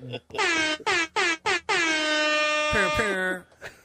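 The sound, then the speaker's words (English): A loud air horn sound effect blasts in four quick stabs, then holds one long sustained blare before cutting off, bright and brassy, played alone. “Remember, the air horn's red.”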